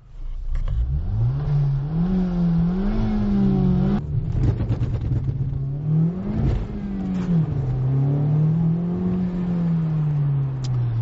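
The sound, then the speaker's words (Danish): A Honda Civic Type R revs hard and accelerates with ESP switched off in wet weather with little grip, its pitch climbing and dipping through gear changes over about eleven seconds, loud with no talking. “Men hvis nu den her bil havde haft sit maksimale greb, så ville vi have kunne ramt 100 km i timen på 5,7 sekunder.”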